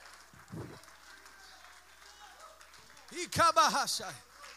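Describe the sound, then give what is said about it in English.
A church audience claps their hands in a steady, fairly soft wash of applause, with a loud voice calling out over it near the end. “Come on, if you believe that, clap your hands.”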